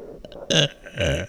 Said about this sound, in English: Why would you burp in the middle of a podcast?